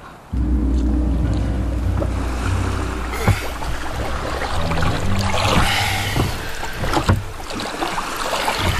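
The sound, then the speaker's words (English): Water sloshes and splashes steadily around a ship's small rowboat on choppy sea at dusk as it heads for Devil Bay, with a low rumbling drone underneath and occasional sharper knocks and splashes breaking through, no voices. “By dusk, he was in one of the ship's rowboats, heading for Devil Bay.”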